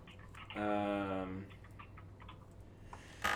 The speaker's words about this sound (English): I hear typing over 64, there.